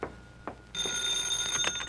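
signal or alarm, telephone bell ringing

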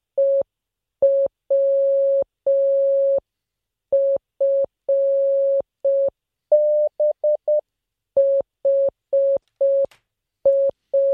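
signal or alarm, morse code beeps

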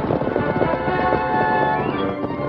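sound effect, galloping horse hoofbeats

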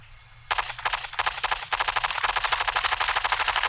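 impact, gunfire

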